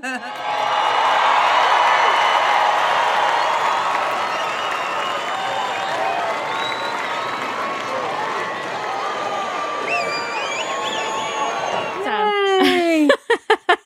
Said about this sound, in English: And awesome. I will edit the applause there after I said that.